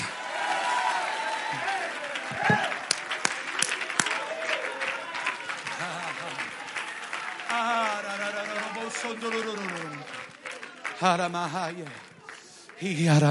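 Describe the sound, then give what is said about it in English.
A church audience, urged by the preacher to clap their hands and shout yes, claps steadily with loud, crackling applause, and excited voices shout and cheer over it, the shouting swelling in the second half before the clapping picks up again. “Come on, somebody clap your hands right now. Somebody shout yes.”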